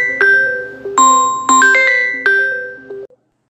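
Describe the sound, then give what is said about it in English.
A melodic phone ringtone for a call from the boss's daughter plays alone, a bright tinkling tune of five or so ringing notes over about three seconds, each fading slightly before the next, then cutting off abruptly. “I guess when the boss's daughter calls, you answer the phone.”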